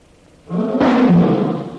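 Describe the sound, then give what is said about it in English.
A very large tiger, just hit by a gunshot but not killed, lets out a loud roar, starting abruptly and sustained as a harsh, rumbling growl for over a second, with no speech over it. “You hit him. Tiger not killed.”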